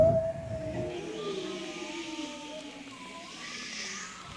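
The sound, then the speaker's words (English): An audience at a performance, asked by the performer to make sound effects, imitates wind and rain together. Wavering whistled and hooting tones glide up and down over a steady hissing wash, sustained and fairly soft throughout. “I need some sound effects from the audience. And so together, it's raining outside, but we can't tell if it's raining inside. Could we get a little wind and rain?”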